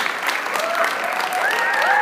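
Steady applause from a crowd at the University of Wisconsin-Platteville, dense continuous clapping at an even loudness throughout, with a few faint whistles or cheers rising over it.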